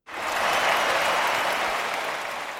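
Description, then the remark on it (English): A crowd at a fundraising event bursts into steady applause for Melania, called the first lady, a dense wash of many hands clapping that rises quickly and holds at an even, loud level throughout. “How about a round of applause for Melania?”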